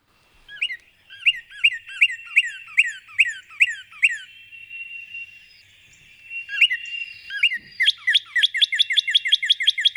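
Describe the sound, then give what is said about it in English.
A northern cardinal sings loud, clear slurred whistles, repeating each note in quick series, pausing, then finishing with a faster run of rapid notes. No one speaks. “But this bird belts out the song. It gets up near the top of a tree and it belts it out, you know.”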